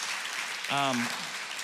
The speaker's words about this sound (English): when I got back from sabbatical in July until now, 15 people have decided to follow Jesus. All right, that's worth clapping about.